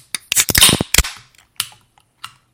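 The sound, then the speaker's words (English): A can of Wayne Gretzky 99 Rye Lager cracks open with a cluster of sharp metallic clicks and a brief fizzing burst, followed by a few fainter scattered clicks as it settles. No one speaks. “So without further ado, let's get this cracked open.”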